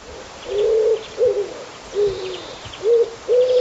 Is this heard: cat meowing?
no